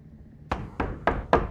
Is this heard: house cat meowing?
no